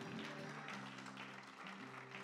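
An audience applauds in a dense, steady wash of clapping that holds at an even loudness throughout, with a faint sustained tone and murmuring voices beneath.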